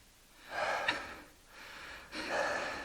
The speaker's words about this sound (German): Paul Wenzel und Dominik Lechner standen keuchend in ihrem Clubraum.